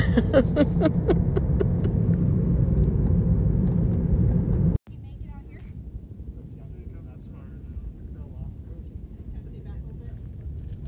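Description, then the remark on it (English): A helicopter drones overhead near the top of Taft Peak, a loud low rumble with a rhythmic chop, then an abrupt cut leaves a quieter, steady hum and wind noise for the rest. “I hear a helicopter in the background.”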